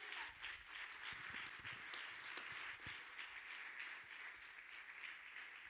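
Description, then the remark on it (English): A crowd claps together in a dense, steady burst of applause, many hands overlapping into continuous crackling that holds at an even level for several seconds without fading. “Everybody get a little hand clap.”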